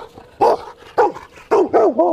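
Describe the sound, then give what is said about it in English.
A farm working dog barks loudly on the command "speak", four sharp, tonal barks in quick succession, the last two running together into a higher, yelping bark. “Hey, speak.”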